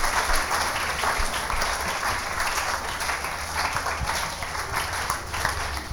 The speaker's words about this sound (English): Please let's clap for all those that shared.